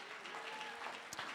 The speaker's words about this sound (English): Why don't you give the Lord one more hand clap of praise.